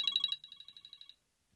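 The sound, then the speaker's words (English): A phone ringtone trills for an incoming call in a rapid electronic pattern, about a dozen quick bright pulses over a second before cutting off, with no voices. “There's a chime. Who's that? That's what's the that? Phone ringing.”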